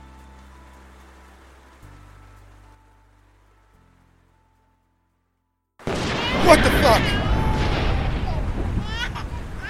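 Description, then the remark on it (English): At night, after a quiet stretch of low droning hum and near-silence, thunder suddenly crashes in loud, rumbling on over the steady hiss of heavy rain. “The thunder startled me awake.”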